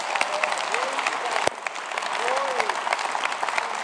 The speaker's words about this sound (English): Give Jesus a hand clap for that.